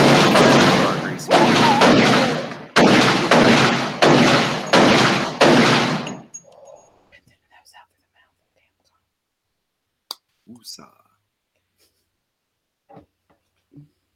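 A gunshot sound effect: a rapid series of loud, harsh, noisy blasts running together for several seconds, each with a sharp attack, then silence broken by a few faint clicks and brief murmurs.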